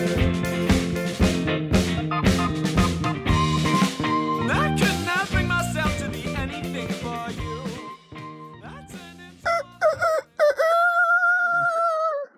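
A rooster, the Adam S. Chuck Rooster mascot, crows loudly near the end, one long strained call, after about ten seconds of busy, rhythmic, music-like sound with dense harmonic layers.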